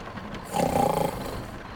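A man snores once, a rough, rumbling intake that swells for about half a second and then trails off into quieter breathing, with no talking.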